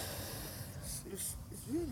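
A small, soft sneeze among a few short, breathy hissing bursts and faint snuffly sounds, with quiet voicing and low background murmur underneath.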